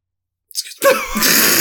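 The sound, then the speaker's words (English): A single sneeze, fairly loud: a short sharp intake of breath, then a sudden breathy burst that trails off into a noisy exhale. No talking. “I didn't see that you were sneezing, like, so you just like...”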